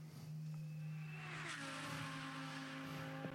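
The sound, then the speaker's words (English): The V10 engine of a Lamborghini Huracan Evo 2 GT race car screams at high speed through the kink and the run up to the KW Chase, its steady harmonic whine shifting pitch as the car blasts past, loud and continuous with no talking. “V10 Song flight through the kink and the run up to the KW Chase.”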